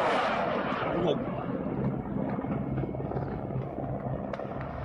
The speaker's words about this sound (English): Bombed out apartments. Helicopters attacking. This is crazy.